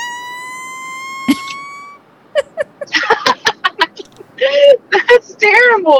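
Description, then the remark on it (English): A steady, slowly rising electronic tone gives way to a quick run of short, sputtering fart noises, some noisy and raspy, others buzzy and warbling, loud and irregular. “What is that? Like a farting machine?”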